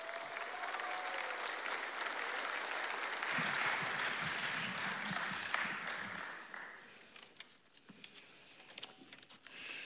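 Audience applause welcoming a nine-year-old boy up to speak rises into steady, dense clapping, peaks around the middle, then thins out into scattered claps and fades near the end. A few low voices murmur underneath.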